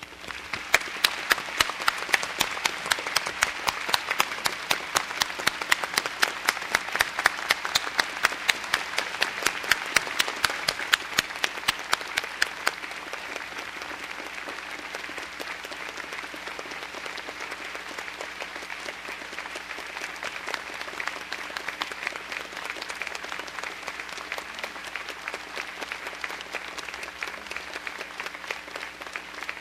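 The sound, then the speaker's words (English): A large audience of graduates and guests at a commencement applauds steadily for about half a minute, honoring the honorary degree recipients. The dense wash of clapping is loudest early on and then settles into a slightly softer, sustained ovation. “I would ask all of our honorary degree recipients to stand once more, and I would ask our graduates and guests to join me in applauding their outstanding accomplishments.”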